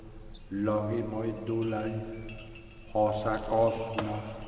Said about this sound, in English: the kind of instrumentation they've tried to recreate, the little bell chimes and a little bit of lute, kind of stringed instrument in behind it, and chanting. So if we can get a chance to hear a bit of that. Yeah, this is what it sounds like.